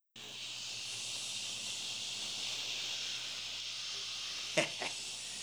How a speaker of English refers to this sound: Oh, that's better. Static. The best thing on.